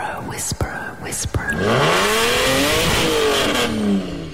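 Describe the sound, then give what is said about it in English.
After a few sharp clicks, a car engine revs up loudly and steadily, its pitch climbing and dipping in smooth waves for a few seconds before easing off. “Who is going to be revving their car, and obviously who has tickets now”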